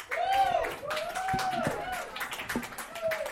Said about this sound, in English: Give it up, guys. Thank you. Big round of applause